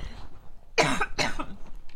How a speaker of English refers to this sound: Sorry, I need to cough.